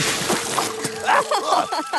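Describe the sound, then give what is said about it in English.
A forceful rush of water from the water cannons of Belle, a large tank engine, hits Flynn and splashes loudly, with sloshing bursts and splatter continuing for a couple of seconds, noisy. “As Flynn showed off his different wheels, he was suddenly blasted with water.”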